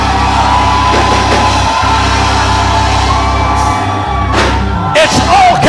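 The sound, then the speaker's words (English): A large crowd shouts and hollers together, loud, a dense wall of raised voices and whoops that swells and surges without pause for several seconds. “It's okay for those who are not shouting. It's okay for those who are not hollering.”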